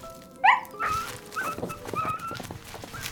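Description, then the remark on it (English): Wolves whining and growling as they are poised to attack: a sharp rising yelp near the start, then a run of short, high whimpers over a low, rough rumble. No one speaks. “Just as the wolves were poised to attack.”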